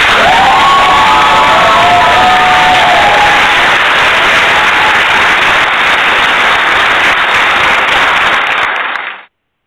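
A loud, sustained burst of crowd applause and cheering, dense clapping with a few rising whistles or shouts early on, holding steady for about nine seconds before cutting off abruptly.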